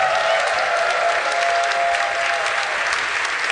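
An audience applauds steadily, a dense, even wash of clapping that holds at a fairly loud level for a few seconds without any voices over it.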